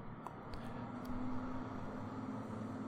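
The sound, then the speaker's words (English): A massive heavy truck drives by outside on a street early in the morning, rumbling past with a steady low engine drone and a faint whine that swells slightly midway, with no one talking. “It's got a massive truck driving by outside.”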